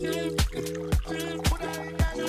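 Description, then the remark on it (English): A song with a water-pouring sample woven in: sustained tonal chords under a steady beat, with splashy, liquid-sounding hits landing about every half second. No one speaks. “But SoundCloud be doing the water pouring samples a lot.”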